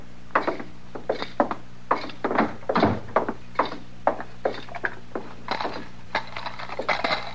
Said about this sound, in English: My gracious, Mr. Dillon, look at that clutch of keys. He sure does use a lot more than we do back home. Yeah. Well, they always did things up fancy in Wichita.